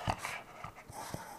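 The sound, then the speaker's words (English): A dog named Bugs pants heavily, its quick breaths broken by a few short, high whimpers over about a second and a half. “So I have a dog, if you guys didn't know.”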